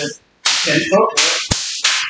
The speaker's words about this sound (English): Oh, wow. Yeah. That's very cool. It does. It's a nice bull whip. It's scary.